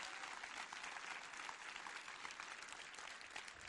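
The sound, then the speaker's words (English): Steady applause from a church audience for veterans, dense clapping sustained at an even level for a few seconds with no talking over it. “Can we give them a applause?”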